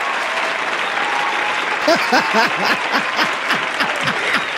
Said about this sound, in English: Please give a warm round of applause, wherever you are